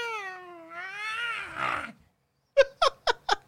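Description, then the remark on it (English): A person imitating a cat: a long, wavering, drawn-out meow that slides downward, followed after a brief pause by four short, sharp yowls in quick succession. No one speaks. “That is you imitating a cat, I believe.”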